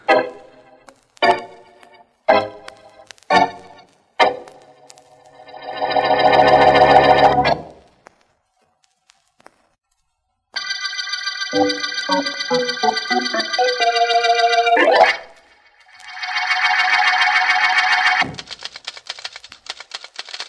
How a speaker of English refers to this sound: Can't you stop that typing for a minute, Anne?